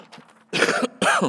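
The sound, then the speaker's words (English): Two harsh bursts of coughing about half a second apart, rough and throaty like clearing the throat, preceded by a soft low murmur, as a preacher starts a sermon. “Start off the sermon with a cough.”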